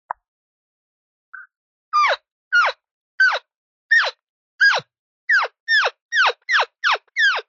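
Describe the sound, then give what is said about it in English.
An elk calf that has become separated and cannot find its mother or other elk calls over and over: about ten high, squealing mews, each sliding down in pitch, coming faster toward the end. No one speaks. “Now, what if a calf gets separated and it can't find mom or another elk?”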